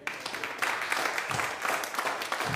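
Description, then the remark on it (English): A church audience breaks into steady clapping, a dense wash of many hands swelling quickly after a quiet start and holding at a moderate level throughout. “You can clap at that.”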